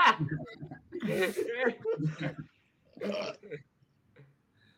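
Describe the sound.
A loud, drawn-out burp rumbles over a couple of seconds, followed by a shorter belch and faint voices reacting in the background.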